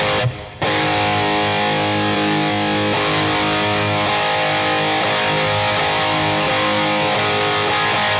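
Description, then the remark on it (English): A heavily distorted electric guitar played through a distortion plus detune effect, with a thick, detuned edge, plays loud, sustained chords and notes after a brief pause at the start, with no talking. “So this one says so distortion, kind of distortion plus detune.”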